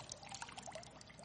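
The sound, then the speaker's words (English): A soft, continuous trickle of water with light bubbling and dripping, fairly quiet, as a sponge is thrown into water and soaks it up; no voices. “But you throw a sponge in water, and it's ready to be used.”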